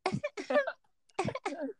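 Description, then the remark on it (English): A voice mimics a woman's small throat-clearing cough in two short bursts separated by a brief pause, fairly clear, with no other sounds around it. “And like, like her little cough.”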